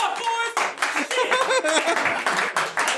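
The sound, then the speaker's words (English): An audience at a live comedy show cheers and whoops loudly in response to a question about fuck boys, with scattered clapping and laughter, a dense, continuous roar of voices lasting a few seconds. “I don't know if you should cheer for that.”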